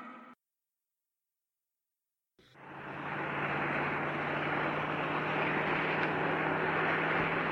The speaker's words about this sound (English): Look, Sprightly, a car. Stop! Hey, stop!